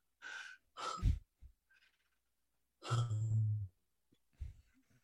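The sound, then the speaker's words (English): A voice imitates Teddy's heavy, labored panting as he came into the car: a few harsh gasping breaths, then a long, deep groaning exhale, fairly loud, followed by a couple of softer breaths. “And Teddy finally came into the car, and he was breathing like this.”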